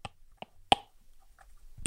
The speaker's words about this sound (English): But the thing with writing on your iPad screen is it doesn't sound good and doesn't feel good. It's too lubricated, and it's just too smooth. So I'll do a demonstration now, a bit of ASMR.